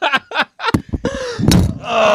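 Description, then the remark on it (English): A loud thump and clatter as a metal microphone stand is knocked over, with a second heavy knock and rattling that follows, set against brief excited voices. “Oh, did I knock over the mic stand?”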